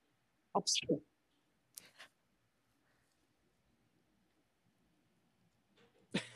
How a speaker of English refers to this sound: He is alone. He sneezed. No one said bless you, so no one is in there.